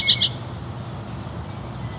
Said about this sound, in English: Looks to be a house wren.